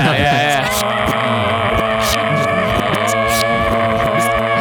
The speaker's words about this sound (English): We need an outro song now. Just play the intro again, but put it in reverse.